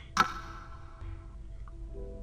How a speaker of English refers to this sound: The second hand on the grandfather clock ticks forward one.